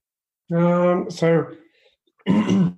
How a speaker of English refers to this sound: listeners may hear you clearing your throat or coughing during the interview, but that's pretty normal for someone with cystic fibrosis.